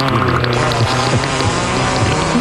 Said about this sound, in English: Oh, and all the farts you can muster